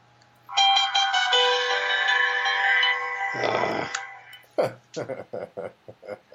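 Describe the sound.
A bright, multi-note ESPN text message notification chime from an old phone rings out clearly for about three seconds, its tones ringing and overlapping, then fades as a man starts talking.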